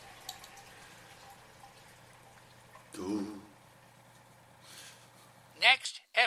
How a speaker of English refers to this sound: Water, there's a leak. It's a burst pipe.